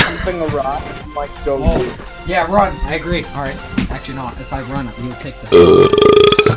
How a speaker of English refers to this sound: You burp every damn podcast! I need to. Every time!